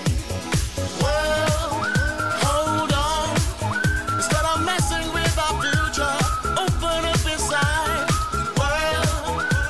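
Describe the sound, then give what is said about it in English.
A whistled melody with sliding notes rides over a loud full-band backing with a steady, driving kick-drum beat, continuous and up front throughout. “Whistling.”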